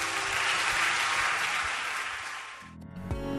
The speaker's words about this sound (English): Lord, a mighty clap offering.